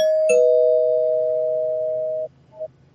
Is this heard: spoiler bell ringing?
yes